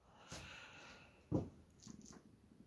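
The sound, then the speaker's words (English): A cat purrs softly, a low steady rumble running through the whole moment, broken by a couple of brief, slightly louder breathy bursts. “Oh, good thing for the cat, though.”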